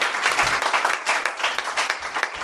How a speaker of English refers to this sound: Dana Gould, people, the best comic ever. How about a nice round of applause for that?